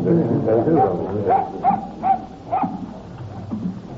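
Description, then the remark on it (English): A dog belonging to Mrs. Dougal, digging, gives a quick series of short, whining yelps and barks, fairly loud, with muffled voices talking underneath at the start. “What are you digging for, old fellow? Whose dog is this?”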